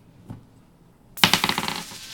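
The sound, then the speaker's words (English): Dice rattle and clatter across a hard table, a quick burst of sharp clicks that bounce and settle within a second, preceded by a single soft tap. Fairly loud, with no talking. The dice are rolled for a history check in a tabletop game. “Can I roll to see if I recognize these?”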